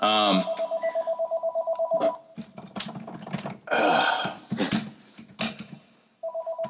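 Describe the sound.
A phone rings with a rapid, pulsing electronic trill for about two seconds, goes quiet while people talk, then the ringing starts up again at the end; it is an automated call.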